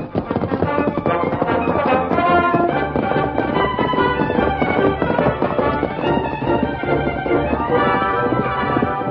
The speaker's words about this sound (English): The Lone Ranger held his great horse, Silver, to a steady lope that covered a lot of ground with a minimum of energy.